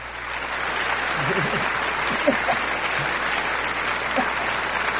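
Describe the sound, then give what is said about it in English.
A played applause sound effect for correct answers in a Guess the Race game: a steady wash of crowd applause, dense and fairly loud, with a few faint voices and whoops poking through the clapping throughout. “Let me play your applause.”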